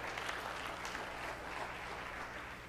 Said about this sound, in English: Can I get an applause? Come on. Thank you.